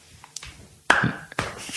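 A slow hand clap: two sharp, loud claps about half a second apart, following a faint tap, with a brief ringing tone after the first clap and no voices.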